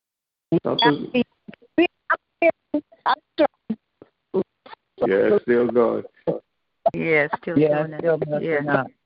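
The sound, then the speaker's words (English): A voice over a bad phone line cuts in and out in short, choppy bursts, then runs in longer garbled, echoey stretches, thin and tinny, with brief silent gaps between fragments. “That echo. That's not. That sounds like that earlier. Yeah. Right. There's something going on with that phone line.”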